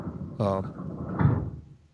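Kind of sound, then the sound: household object, garage door opening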